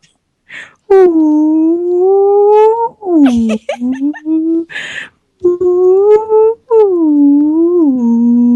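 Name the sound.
person imitating whale noises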